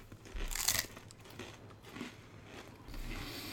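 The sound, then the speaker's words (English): Wet, crackly crunching of The Dragon's Fury being chewed, a loud bite near the start followed by quieter, irregular mouth noises and soft munching, with no talking. “Why am I speaking when I've still got this stuff in my mouth?”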